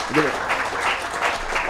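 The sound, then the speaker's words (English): A room full of people claps in a steady, dense wash of applause welcoming a speaker, with a brief voice rising at the start before the clapping carries on alone. “Get applause.”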